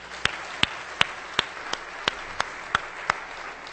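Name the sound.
audience clapping hands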